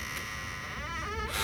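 A door creaks open as someone comes out, with a wavering, drawn-out squeal that bends up and down in pitch over about half a second, followed by a brief rush of noise.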